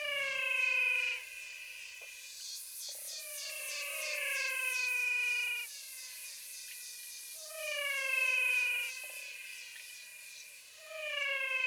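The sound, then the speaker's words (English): A chorus of frogs in the Pantanal wetland gives eerie, siren-like descending whistles, several voices overlapping in steady repeating bouts, fairly loud, with no one talking. “Some amazing frogs we recorded. They have a voice that sounds like something you might find in an old science fiction story set on the planet Venus.”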